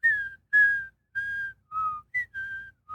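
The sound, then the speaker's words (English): From John Williams' score for Empire, at the top of the film after the title crawl as the camera pans down to a Star Destroyer, a piccolo plays a bright, high melody of seven short held notes with small pauses between them, riding over a low, dark rumble of brass underneath. “But if you look at the top of Empire, after the title crawl, as it pans down to that Star Destroyer, all these brass are going nuts. But over the top of it, this piccolo is going.”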